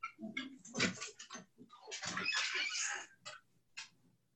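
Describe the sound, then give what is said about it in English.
A dog moves around, its claws and paws making scratchy, pattering bursts on the floor in an irregular run of shuffles as it wants to go outside, with no one speaking. “Sorry, my dog is here.”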